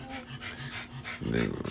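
The speaker's dog Sosa pants quickly and steadily, short breathy puffs in a quick rhythm, followed by a louder, more voiced breath near the end.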